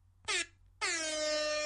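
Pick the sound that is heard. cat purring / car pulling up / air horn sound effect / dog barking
air horn sound effect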